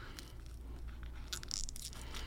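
A blue and orange candy wafer is bitten, giving a cluster of dry crunches with a brief high-pitched squeak in the middle, fairly quiet over a low steady background hum, with no talking.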